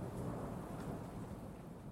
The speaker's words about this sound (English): Eventually, the storm clears enough where it's safe to step outside.